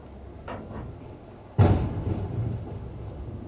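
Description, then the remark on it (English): A big rig truck crashes into a car on an icy road: a sudden, loud, crunching bang that decays into a low rumble with a faint lingering metallic ring, preceded by a couple of soft thuds. No one speaks. “He tore the shit out of that car.”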